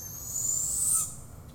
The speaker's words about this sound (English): It could have been owls.